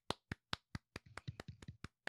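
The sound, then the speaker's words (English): A few people clap. Steady, crisp claps start off alone, the claps crowd together into an uneven patter as others join, then thin back to a single regular beat. No one speaks. “Everybody clap.”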